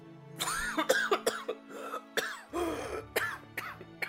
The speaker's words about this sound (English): So much noise. Could you try coughing quietly?